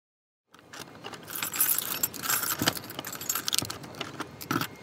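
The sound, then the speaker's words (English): Keys jangle and scrape as they work the top and bottom locks of a heavy apartment door, with metallic clinks, a few sharp clicks and turning rattles spread over several seconds, and no talking. “You have to kind of twist the top lock just the right way and the bottom lock, and then kind of push with your shoulder.”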